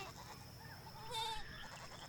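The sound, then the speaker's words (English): A single short, wavering bleat from a neighborhood goat rises out of a quiet outdoor background with a faint steady hum, lasting about a quarter second. “He collects fruit to hand out to all the neighborhood goats.”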